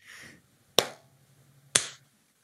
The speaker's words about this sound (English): Shall we clap this in?